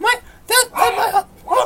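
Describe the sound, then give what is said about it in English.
A dog barks several times in quick, uneven bursts, loud, with a short run of yappy sounds in the middle and a final sharp bark. “Oh my god! There's a dog!”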